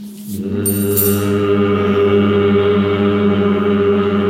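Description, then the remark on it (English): A low, steady hum sustained on a single pitch for about four seconds, fairly loud, made on the exhale while coming back to center from a yoga twist, beginning after a brief breath with no talking. “Hum on the exhale as you come back to center.”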